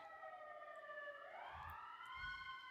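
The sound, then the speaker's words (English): An emergency vehicle siren wails as it passes outside, its pitch sliding down and then climbing again, faint and muffled, with a few low rumbles underneath. “Sorry if you hear sirens.”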